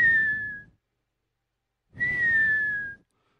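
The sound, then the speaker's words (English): A person imitates a whistling stuffy nose: two breathy exhales, each carrying a thin high whistle that slides slightly downward, separated by about a second of silence. “No, my nose does not do bird calls. It's like an alarm clock. With every breath, it's like...”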